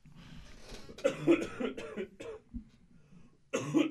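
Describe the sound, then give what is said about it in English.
A man coughs several times, a rough burst of hacking coughs followed by a short pause and then another harsh cough at the end. “He's coughing.”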